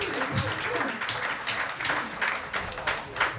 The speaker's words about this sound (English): So, yeah, round of applause, yes.